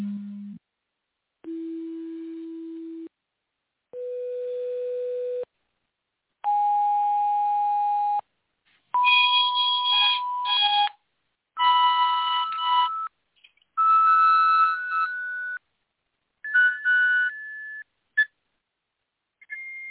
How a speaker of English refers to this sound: This is what, if you're a friendly ET out there, this is what you might hear. So this is the original chirp recording.